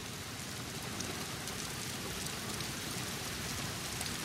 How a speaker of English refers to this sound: The soundscape is a thunderstorm.